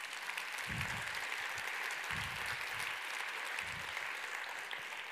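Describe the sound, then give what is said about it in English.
A room full of people applauds the peer leaders, clapping steadily in a dense, continuous wash of applause that holds at an even level for several seconds, with no voices rising above it. “Can you give a round of applause for those guys?”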